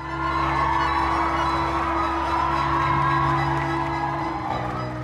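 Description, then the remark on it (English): A crowd cheers and whoops continuously at The Queen's Ball, Bridgerton Experience in Atlanta, as gold confetti falls and the diamond of the evening is chosen, a dense, steady wash of voices holding at an even loudness for several seconds, with a low sustained hum underneath. “spun around as gold flakes of confetti fell from above and the crowd cheered on.”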